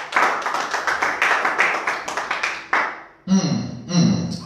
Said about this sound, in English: Can you clap again for Jesus? I want you to clap for Him.